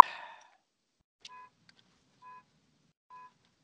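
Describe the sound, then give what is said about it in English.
A short rustle, then three evenly spaced electronic car warning beeps from a car someone is sitting in, each brief and steady in pitch, repeating about once a second at moderate volume with no talking. “Oh, what you get when you sit in your car and record a podcast.”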